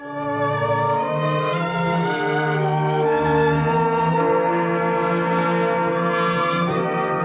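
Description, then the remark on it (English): A church bell rings steadily for several seconds at the dedication of the first church of Tombstone, its rich, layered overtones humming continuously at an even, fairly loud level with no voices. “And so, folks, while all we got's a foundation and a bell, I hereby declare their first church of Tombstone, which don't have a name yet, nor no preacher either, officially dedicated.”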